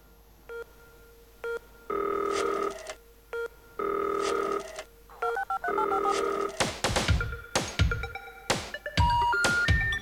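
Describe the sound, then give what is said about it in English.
A phone rings in three long tonal bursts with short gaps, followed by a rapid flurry of dialing tones and clicks, loud with no one speaking. “Who are we going to phone up?”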